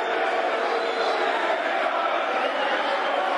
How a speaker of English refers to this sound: Referee's put the second yellow card out and off he goes. That's a derision. That's a derision of the Millwall crowd, as you can hear.